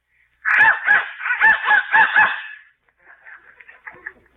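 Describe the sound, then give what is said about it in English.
A toy whistle is blown in a run of about six loud, squawky honking blasts, then trails off into softer, wavering warbles. No one speaks. “Who's blowing that darn whistle in here?”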